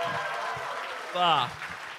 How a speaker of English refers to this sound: Sorry. You guys fucked up there. You were not supposed to applaud. We're crumbs of the month. Everyone boo.